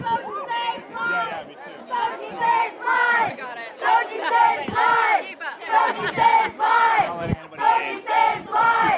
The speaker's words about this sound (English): the crowd of people trying to get into the room. And then it got pretty aggressive. People were starting to push and shove and get angry.